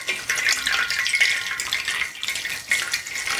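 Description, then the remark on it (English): A sponge is wrung out, releasing a steady, hissy splatter of water into a sink for a few seconds, with brief dips as the grip shifts. No one speaks. “And now the next step is to take our sponge, just wring out the water.”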